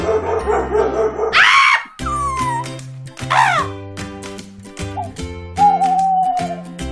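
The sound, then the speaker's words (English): Dogs bark and yelp in short, sharp bursts, with a few drawn-out whining howls, all layered over a steady background of music-like tones. No one speaks. “Come see our mad woman. She'll throw dogs at you.”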